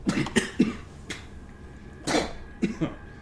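A person coughs up sticky black mud in a rapid, wet series of bursts, several hacks in a row followed by a pause and two more harsh coughs, fairly loud with no talking.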